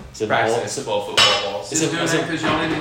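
Metal barbell plates slam and clank repeatedly, with sharp loud impacts and ringing, rattling resonance that lingers between hits, fairly close by.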